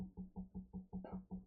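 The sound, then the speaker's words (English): A foot knocks repeatedly against a hard surface as a person's leg shakes, in a fast, steady rhythm, about eight dull, low thuds in quick succession with no talking. “But you knocking, motherfucker. That's my foot.”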